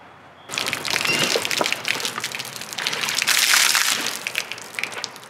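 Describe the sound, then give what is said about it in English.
Slurping and sipping water from a drink box, with crinkly, crackling noises from the carton and straw running steadily for about five seconds. No one speaks. “I wish there was such a resourceful and logical way I could just have a drink of water.”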